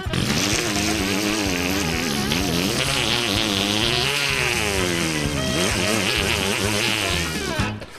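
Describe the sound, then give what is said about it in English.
A voice imitates a chainsaw with a loud, raspy buzz that runs for several seconds without a break, its pitch wavering up and down as if revving, then cuts off. “Oh, get the chainsaw, man.”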